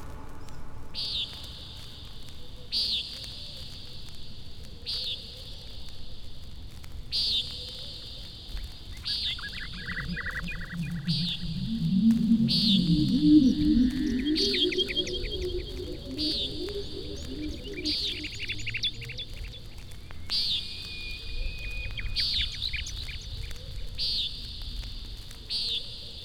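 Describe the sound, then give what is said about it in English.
Common Nighthawk calls: a dozen or so short, buzzy nasal notes repeated steadily every couple of seconds, over softer background chirps and a low warbling murmur midway. “Common Nighthawk.”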